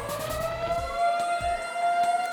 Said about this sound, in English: Other than the school bell being replaced by a siren that wouldn't be out of place in a dystopian prison, Onslow hasn't changed a lot.